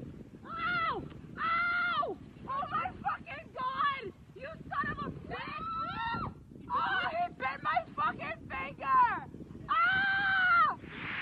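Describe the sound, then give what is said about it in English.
A woman on a beach screams repeatedly in loud, high-pitched bursts after an iguana runs up and bites her hand while she does a handstand, some short and sharp, others drawn out, with wind rumbling steadily underneath throughout. “She's on the beach doing a handstand and then an iguana runs up and bites her hand and she screams.”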